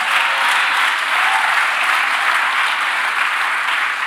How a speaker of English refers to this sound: Come on, clap like you mean it.